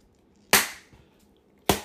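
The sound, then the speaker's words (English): Two loud, sharp hand slaps on raw pork belly to tenderize the meat, a little over a second apart, each a crisp smack that fades quickly, with near silence between and no talking. “That was a disrespectful slap, bro.”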